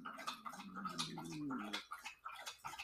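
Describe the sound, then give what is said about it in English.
A pet named Daisy laps water in a quick, steady rhythm of wet splashy slurps, with a low humming tone running underneath for the first half. “Daisy drinking her fucking water.”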